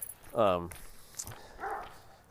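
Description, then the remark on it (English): A dog lets out one loud, sharp yelping bark, followed a second later by a softer, shorter yip. “it's okay, pup. Jackson. No pull. It's okay, pup.”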